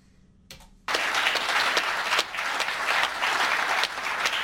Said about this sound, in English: That's like, by the way, that applause is still for Trump in December. That's his after he lost, and they're still clapping for him, like, that long.